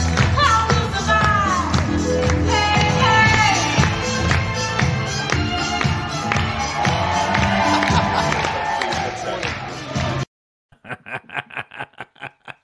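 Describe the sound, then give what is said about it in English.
A large crowd cheers and roars loudly during a warm-up act for about ten seconds, full and dense, then cuts off abruptly, followed by a few short, rhythmic bursts that sound like laughter. “we actually have somebody warming up our crowd today.”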